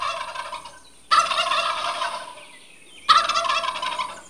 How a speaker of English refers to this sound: Wait, I think that's a turkey. Yes, you are right. That's a turkey.